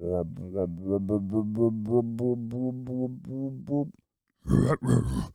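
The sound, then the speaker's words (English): A voice imitates a dinosaur's rumbling stomach: a long run of low, rhythmic grunting pulses, a short pause, then two harsh, breathy growls. “But the dinosaur's tum made a rumbling sound.”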